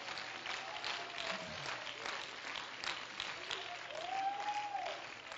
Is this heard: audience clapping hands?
yes